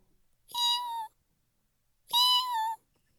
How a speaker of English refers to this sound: And from underneath our RV, we heard the world's tiniest, tiniest, quietest meow.